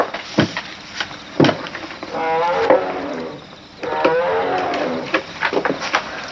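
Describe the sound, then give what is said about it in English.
Two long, low, moaning animal calls, like a distant lion, drawn out one after the other, with a few sharp knocks and clicks scattered around them and no talking. “I'm sorry, I just can't sleep with that lion or whatever it is chirping out there.”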